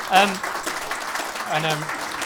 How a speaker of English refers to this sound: That sounded like a speech. I just instinctively clapped.